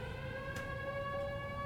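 A town air raid siren, switched on from the sheriff's station, wails with a steady, rising-pitched tone, loud and sustained throughout, over a low rumbling background.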